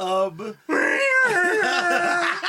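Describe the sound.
A person vocally imitates Godzilla's roar: a short groaning note, a brief pause, then a long, loud, strained screech that wavers and warbles in a thin, high-pitched voice.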